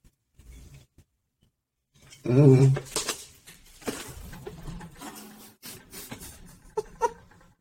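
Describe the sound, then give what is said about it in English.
A chair that is missing a screw gives way as someone leans too hard on it, with a loud pitched creak and a burst of clattering, knocking and rattling that trails off into scattered clicks and a couple of sharp taps. “My chair just broke.”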